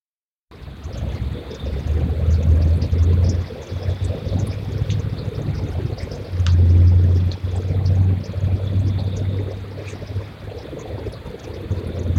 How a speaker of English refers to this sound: Now, to me, that sounds like a heavy engine rum off in the distance. That's what I was going to say, because even if a car did pass by, it's not going to sound like that. Mm-mm. It's not that kind of engine.